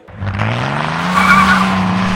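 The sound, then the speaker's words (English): A BMW's tires screech loudly as it speeds off down Wilshire Boulevard away from the restaurant Spago, the engine's low drone rising in pitch beneath a sustained high squeal that peaks midway and holds to the end. “Morty screeches his BMW down Wilshire Boulevard away from Spago”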